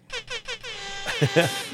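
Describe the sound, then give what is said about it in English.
A loud air horn sound effect blasts three short honks in quick succession, then one long sustained blare that wavers slightly in pitch toward the end. “Should I give him an air horn?”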